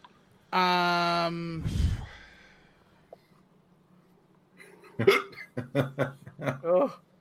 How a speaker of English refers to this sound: Did somebody hiccup?